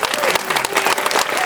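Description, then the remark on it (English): An audience of patients, caregivers and survivors at an Exact Sciences event applauds steadily, a dense wash of many hands clapping at a fairly loud, even level with no break in the sound. “Please give yourselves a fantastic round of applause.”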